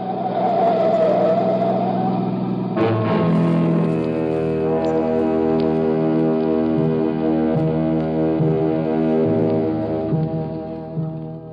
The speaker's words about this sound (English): Alone at last on Pier 17, Hoboken, a banana boat was whistling hello to the USA. The Susie Q.